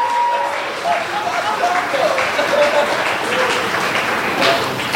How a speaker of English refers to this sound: Your final competitor, Ian Karmel. Clap your hands for Ian Karmel.